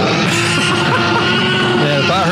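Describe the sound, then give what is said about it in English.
A loud, sustained T-Rex roar sound effect, a deep bellowing growl with rough, wavering tones that fills the whole couple of seconds, dominant with no talking over it. “Come on, we got the roar, right?”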